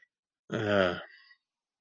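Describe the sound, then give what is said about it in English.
A single loud, low voiced burp lasting about half a second, with a rough, buzzing tone that trails off quickly, against otherwise near silence, while eating grapes. “Burping and choking and eating another grape.”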